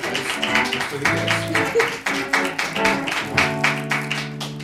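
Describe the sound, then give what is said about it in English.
An audience breaks into sustained applause for Jo Firestone, a dense wash of many hands clapping at once, steady and fairly loud, with a musical tune playing underneath throughout. “And while you do that, let's give a round of applause to Jo Firestone.”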